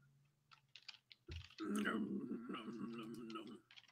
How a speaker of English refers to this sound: Oh, I can hear you typing away. Are you going to IMDb? I am marking. I'm marking the timestamps for our show notes.